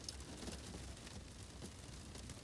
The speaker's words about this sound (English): I'm broadcasting from my Ford Focus, which is sitting in an AutoZone parking lot in Fort Worth, Texas. And the noise that you hear in the background is freezing rain that is hitting the car.